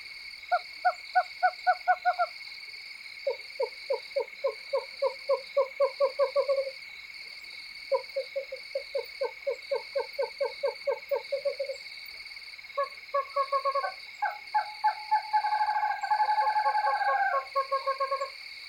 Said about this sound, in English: A tiny owl, only around 8 or 9 inches tall, the western screech owl is common in the riparian zone along the Rio Grande River. And then, to my delight, the mate arrives and the two owls sound off together, an excited vocal reunion.